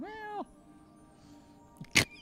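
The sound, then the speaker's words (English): A person voices a single short, whiny meow in imitation of a cat, rising then dipping in pitch, followed after a pause by a brief sharp crackling burst. “Are you channeling the cat? I am channeling the cat.”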